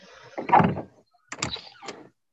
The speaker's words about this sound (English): I opened the door up. Okay, there's nothing on the other side.